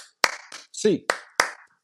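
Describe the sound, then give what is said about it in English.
Sharp hand claps by UCLA Bruins fans land in a steady eight-count cheer rhythm, about five crisp smacks, with a brief voiced shout breaking in between them. “It's time for an 8 clap, baby. And 1, 2, 3, 4, 5, 6, 7, 8.”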